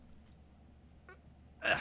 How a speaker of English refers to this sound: I tried to burp.